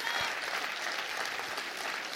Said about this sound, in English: Come on, clap your hands and rejoice to that.